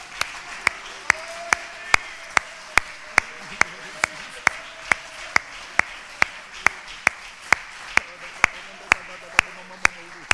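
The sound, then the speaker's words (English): A church audience claps their hands to the Lord in unison: sharp, evenly spaced claps at a steady beat of about two or three per second for ten seconds, over a low murmur of voices. “Why don't you just clap your hands one more time to the Lord?”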